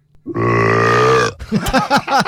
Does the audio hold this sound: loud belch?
yes